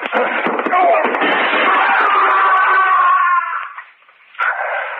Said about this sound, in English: Oh, you knocked him through the window.